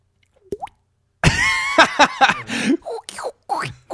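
A single quick rising plop, like a water drip, is followed by a dense run of gurgling, bubbly mouth noises, a voice imitating dripping and sloshing water in irregular bursts as a dripping-water foley effect, Track 7 of the Chaotic Amateurs Foley record.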